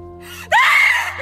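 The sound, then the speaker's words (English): A woman screams suddenly and loudly in her sleep at night, her shrill voice rising sharply and then holding for just under a second against a steady low electrical hum. “She began screaming at odd times during the night, in which I would be forced to calm her down.”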